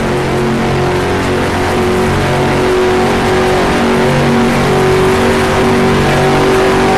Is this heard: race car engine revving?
yes